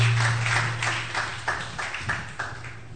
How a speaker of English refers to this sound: Clap your two hands together for the Lord.